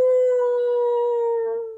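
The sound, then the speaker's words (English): A voice imitates a crying elephant with a long, sustained, steady wailing tone that holds for nearly two seconds before trailing off, heard alone. “And the poor little boy elephant is crying his heart out.”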